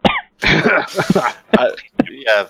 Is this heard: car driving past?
no